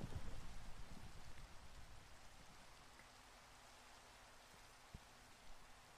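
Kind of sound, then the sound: nature, rain falling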